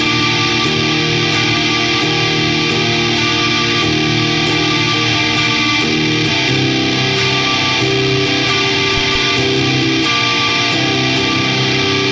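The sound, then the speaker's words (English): An electric guitar played through a saturated Civil War fuzz pedal, thick, buzzing chords ringing loud with steady strums for about twelve seconds, no voices. “take note that the reason why that Civil War sounds more saturated is because if I'm going to stack, or in this case, stack parallel, I would still choose”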